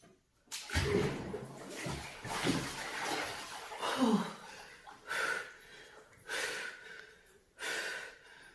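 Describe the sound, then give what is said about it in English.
A person gasps and breathes sharply in short, strained bursts while getting into freezing cold plunge water, with faint splashing and sloshing. The breaths come in uneven waves, loud. “See, the water is so cold that I can't put my toes fully in the water.”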